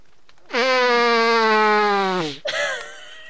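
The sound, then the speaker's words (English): Someone imitates a circus elephant trumpeting: a loud, brassy, horn-like blare held for about two seconds, dipping in pitch at the end, then a brief wavering second burst. “that's the our fucking circus elephant.”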